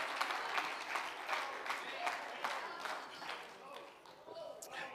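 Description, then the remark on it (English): An audience at an evening service claps their hands together at the preacher's call, in a sustained, dense burst of applause, with a few louder individual claps standing out against the steady crowd noise throughout. “If you believe that tonight, clap your hands.”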